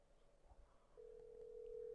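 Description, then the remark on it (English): A phone call's ringing tone, heard through a handset held up to a microphone: a steady electronic hum that begins midway after faint low rumbling and continues to the end. “Put your phone up to the mic.”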